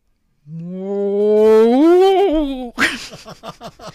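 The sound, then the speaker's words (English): A person imitates a bellowing cow with one long, loud, droning moo that starts low and slowly rises in pitch over about two seconds, followed by a burst of choppy laughter or talk. “And he knows this because he can hear them really bellowing. How does that sound?”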